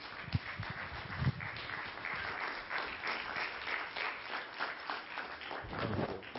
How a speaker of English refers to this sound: Kids living in faith, let's cheer as they go out, kids. Have a great class.